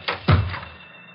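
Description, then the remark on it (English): A front door slams shut: a light click, then a single heavy, low thud that rings out briefly and fades. No voices. “The birds had been quiet, but the slam of the door maybe started them off.”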